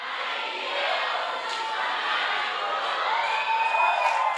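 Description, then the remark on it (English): A youth church audience screams and cheers loudly and continuously, a dense wall of high-pitched voices with a few shrill whistle-like shrieks rising above the roar. “Yes, that sounds like a youth church.”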